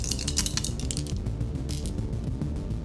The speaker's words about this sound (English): Excellent ASMR, okay. Though. I had to count, make sure I had the right dice.